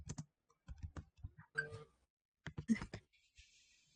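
Quick bursts of keyboard typing, clusters of sharp clicks and taps with short pauses between them, at a moderate level, with no voices.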